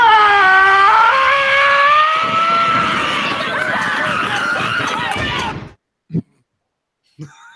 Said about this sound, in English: We have honored the request to bring in … with the blood-curdling scream